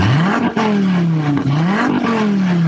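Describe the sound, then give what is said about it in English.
A car engine revs loudly, its pitch climbing and dropping back in two or three quick surges before settling into a steady roar. No one speaks. “How do y'all not want to move cars?”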